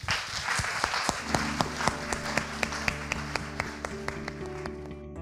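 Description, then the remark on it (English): An audience at a Royal Academy panel event applauds to thank the chair, a dense, steady wash of clapping; after a second or so a tonal piece of music with a regular percussive beat rises over the fading applause. “Join me in thanking our fantastic chair”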